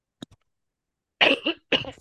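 coughing

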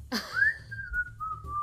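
person whistling a tune

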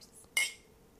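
glasses clinking

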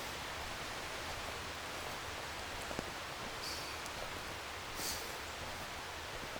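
river water flowing

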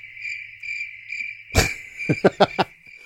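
crickets chirping

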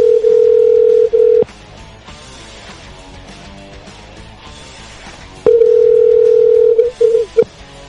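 telephone dial tone

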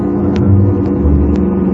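car approaching on road

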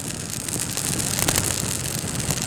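crackling bonfire

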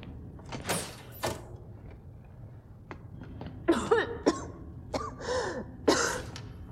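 person coughing

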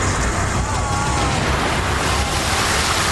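rushing water

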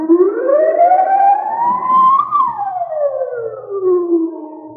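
alarm siren

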